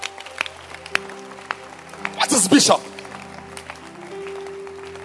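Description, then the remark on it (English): A short burst of audience clapping rises for under a second amid a man speaking, loud and crackly before quickly fading as his talk continues. The audience claps for the apostle Paul during a religious talk. “Can you clap again for Paul?”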